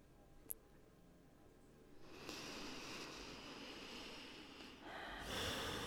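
A long, deep breath drawn in through the nose, a soft airy hiss that starts after a brief pause and swells stronger toward the end, quiet with no talking.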